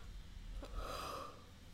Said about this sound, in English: Oh my god, did I just yawn? It's like 10 o'clock in the morning.